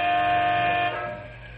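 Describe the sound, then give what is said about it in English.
The air horn of one of three big Canyon City Truck Company transport trucks, waiting for a freight train blocking the North Highway, blares in one loud, sustained blast that holds steady for nearly a second, then cuts off and leaves a fading ring behind it. No one speaks. “leans on his air horn as he grows impatient”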